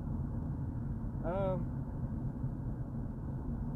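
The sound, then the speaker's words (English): Steady low road rumble fills the interior of a moving car whose wheel has just been fixed, so it no longer knocks, with constant traffic noise and a brief high, warbling tonal sound partway through. No one speaks. “Only thing you can hear now is just the road, all the other traffic,”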